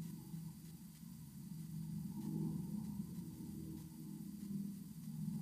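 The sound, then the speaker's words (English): A helicopter drones steadily overhead, a low rumbling hum with a faint pulsing texture that holds at an even, quiet level throughout, with no voices. “As I record this, I can hear a helicopter.”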